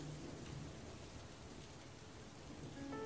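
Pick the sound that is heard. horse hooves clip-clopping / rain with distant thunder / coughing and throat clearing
rain with distant thunder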